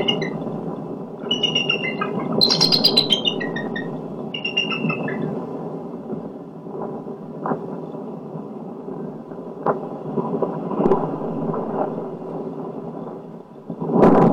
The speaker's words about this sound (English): Right, so that was all eagle.